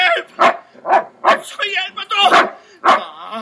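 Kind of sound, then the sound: animal, guard dog barking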